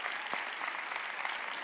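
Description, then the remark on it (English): An audience at the Little Creek campus on New Year's Eve gives God a hand clap, sustained, dense applause, a steady wash of many overlapping hand claps at even loudness with a few sharper individual claps standing out. “Come on, can we just give God another hand clap for that?”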